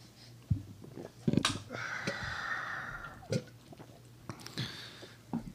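A person gags and retches after swallowing a shot of Crown Apple whisky, with strained throaty heaves, a wheezy drawn-out breath and sharp coughing bursts, quiet between the bursts.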